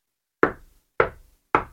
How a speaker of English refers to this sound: But to do that, he needed to get to Grandmother's house first. He knocked on the door.